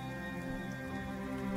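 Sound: rain falling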